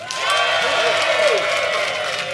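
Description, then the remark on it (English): The Latitude audience bursts into applause with some cheering to vote for a side in a comic courtroom debate, a dense, steady wash of clapping that stays loud for a couple of seconds, with a few voices calling out over it. “But if you think that Fanshawe and Ashlyn made the best case, I'd like you to applaud now.”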